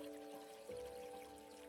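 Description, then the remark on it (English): Soft, steady trickling water of a forest stream runs continuously beneath a low humming drone, faint and unbroken, with no voices present. “She noticed the sound of trickling water and low rhythmic drumming that she had not heard before.”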